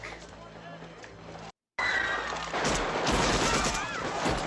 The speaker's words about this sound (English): I mean, there's a bomb, there's guns, there's a car chase that happens here in a second. Really good time.